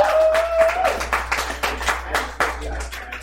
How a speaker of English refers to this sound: Delta Work goes on. Work. Everyone clap for Delta. Yeah.